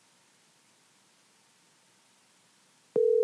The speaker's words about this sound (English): we're going to get him on the phone right now. I'm going to call him. See if he's up.